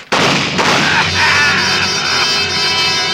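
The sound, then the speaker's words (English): As a door flies open, a sudden loud burst of gunfire erupts and keeps going as a dense, harsh, crackling roar for about three seconds, with a shouting, crowd-like clamor mixed in. “When the door flew open, I ducked and the shots came.”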